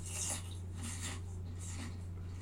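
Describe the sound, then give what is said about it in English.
Crisp, crunchy chewing of potato chips in three or four bright, crackling bursts, paced slowly over a steady low electrical hum, with no talking. “Here's potato chips chewing a bunch.”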